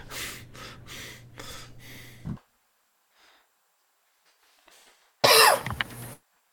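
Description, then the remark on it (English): A long stretch of near silence is suddenly broken by a single loud cough near the end, following some earlier breathy, rustling bursts. No one speaks. “Just the awkward silence. Broken by one cough.”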